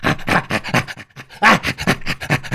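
Rapid, breathy panting pulses in a steady rhythm, fairly loud: a chimpanzee's play panting, or chimp laughter, with a brief pause before a slightly louder burst resumes.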